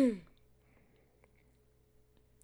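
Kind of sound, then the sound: human body sound, cough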